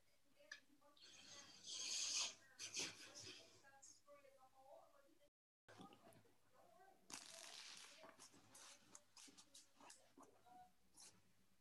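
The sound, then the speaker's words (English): A deck of cards is shuffled for a card reading, with two crisp, rattling riffle bursts separated by a short pause and softer handling sounds between them. “And you'll hear me shuffle these.”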